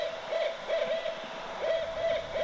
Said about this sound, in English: The sound of the owls, it's a nocturnal sound, isn't it? It's a kind of a late night kind of sound.